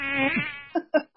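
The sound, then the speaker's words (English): A steady insect whine drones for over half a second, then breaks into three short buzzing bursts separated by brief silences, like mosquitoes darting about, a mosquito invasion as in the 1966 movie Mosquitoes. “It's the mosquito invasion.”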